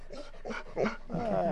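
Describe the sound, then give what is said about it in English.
A dog named Mahler whimpers and yips while wrestling with something, in a quick run of four or five short, high, whiny bursts, the last stretching into a longer, wavering whine. No voices are heard. “He's wrestling with something right now.”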